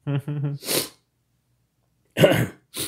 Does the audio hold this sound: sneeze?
yes